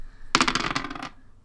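dice being rolled

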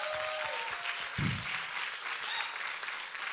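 audience applause

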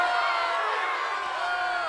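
applause sound effect

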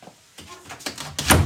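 door being shut

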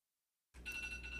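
phone alarm going off

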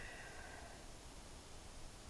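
white noise hiss

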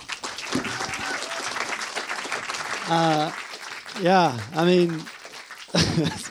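audience applause

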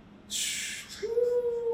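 cat meowing

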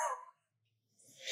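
sniffing wine

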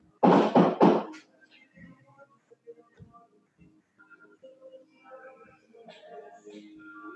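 knocking on a door

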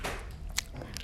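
chewing gum

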